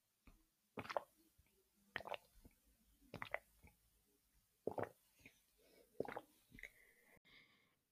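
Someone sips water from a mug, with five or six quiet slurping gulps spaced roughly a second apart, followed by a soft breathy exhale. Nobody talks.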